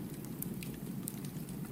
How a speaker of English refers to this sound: Only the tinkle of the stream and the crackle of your now well-burning fire shimmer through the night air.